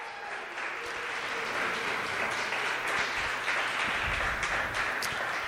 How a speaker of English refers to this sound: So one more time, give all of our speakers a round of applause. They were so amazing, so amazing.